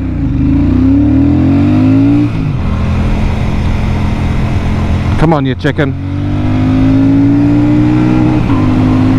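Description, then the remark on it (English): A Royal Enfield Meteor 650 twin-cylinder motorcycle engine revs loud on a motorway, pitch climbing steadily through fourth, fifth and sixth gear up to about 70 miles an hour, with a brief break midway, while a man talks briefly over the engine noise. “Royal Enfield Meteor 650 Remastered Review”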